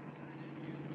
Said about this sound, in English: Hey, what's that coming, Hooksy? Uh-oh. Police car, I guess.